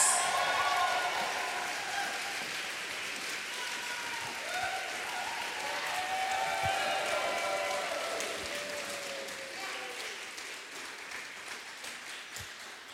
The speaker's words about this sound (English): I'm going to ask you guys to applaud for another poet. I think you all know how it works by now.